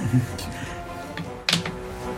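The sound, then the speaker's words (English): A few sharp, hard clicks and clatters of dice dropping off a table, with one louder knock near the middle, over a faint background murmur of voices. “dropping dice off the table.”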